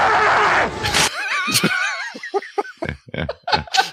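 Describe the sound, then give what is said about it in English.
Harrison Ford lets out a loud, drawn-out, wavering angry yell in a film while still on a bike, after a burst of rough, noisy rumble, followed by short choppy bursts of what sounds like laughter. “And then Ford angry acting yell thing when he's still on the bike.”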